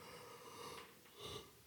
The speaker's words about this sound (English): Sorry about that. Yeah, I don't mean to yawn into the microphone, but man, I really haven't had any coffee or anything today.